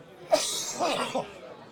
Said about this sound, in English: Sounds like me, doesn't it? Please continue. Please continue. The coughing fit took me. That's okay.